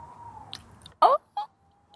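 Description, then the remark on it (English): A person imitates an owl call: two short, loud hooting bursts in quick succession, the first strained and wavering, following a faint steady tone at the start. “That was me. Yes, that's me, just a humble farmer by day, but an intrepid owl whisperer by night.”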